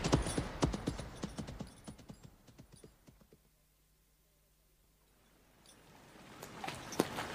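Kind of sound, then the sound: animal, horses' hooves clip-clopping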